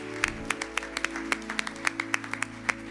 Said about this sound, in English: Can we give the Lord a hand clap of praise today? Thank you for what you've done. Thank you, Jesus.